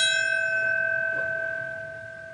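A single memorial bell tolls at a remembrance ceremony for attacks 20 years earlier, with a long, ringing tone whose bright overtones hang in the air and slowly fade, heard alone with no voices.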